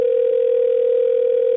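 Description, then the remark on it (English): A steady, unbroken telephone dial tone after a call is disconnected hums at a single mid pitch, loud and even throughout, with no voices or other sounds. “I believe we were disconnected, yes.”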